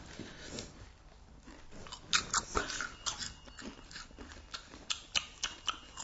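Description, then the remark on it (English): Crunchy maize snack being chewed: a run of sharp, crackly bites and crunches, some louder than others, arriving in an uneven rhythm with no talking. “I'm adding to the soundtrack.”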